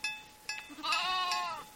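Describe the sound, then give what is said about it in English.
Dozens of Angora goats and churro sheep, crowded into a makeshift corral of pallets, plywood and fencing on Black Mesa, bleat: a couple of short cries, then one long, quavering bleat that rises and wavers before fading, with a steady faint background hum. “dozens of Angora goats and churro sheep are crowded into a makeshift corral of pallets, plywood, and fencing.”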